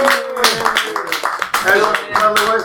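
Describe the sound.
An audience claps steadily in a dense patter of many hands, with whoops and raised voices riding over the applause throughout.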